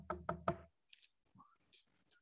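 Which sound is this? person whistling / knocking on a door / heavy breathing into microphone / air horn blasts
knocking on a door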